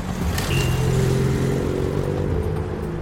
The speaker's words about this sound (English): On the ribbons of road that deliver us to new places, each car that thunders by tells its own story.